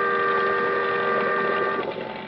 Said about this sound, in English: The boat siren, crying its warning, drowned out my shouts. It went on past, and the fog closed in behind it.